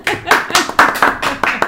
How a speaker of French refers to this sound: Oui, vous pouvez vous applaudir, les gars.